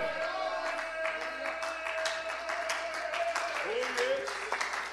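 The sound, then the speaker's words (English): An audience claps hands in a steady, dense patter of sharp slaps, over sustained voices holding tones underneath, lasting throughout at a fairly loud level. “Oh, clap your hands, all ye people.”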